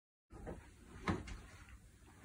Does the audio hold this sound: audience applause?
no